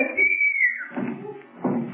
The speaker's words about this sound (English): That whistle, you mean? Yes, it sounded as though it was right here in this house. I think it came from the cellar.